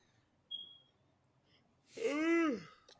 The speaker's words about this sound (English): Damn, he yawned to that shit.